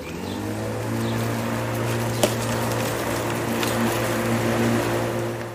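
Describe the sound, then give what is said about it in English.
A lawnmower engine drones steadily on a Saturday with a low, buzzing hum that holds a constant pitch throughout, broken only by a couple of faint clicks. No one speaks. “And now on Samstag, Saturday, Clau can begin the lawnmower again.”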